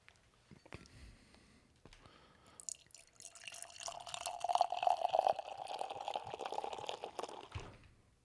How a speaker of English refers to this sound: Alrighty, so we're going to pop this fucking bottle open. Oh, yeah, baby. We're going to get the pour.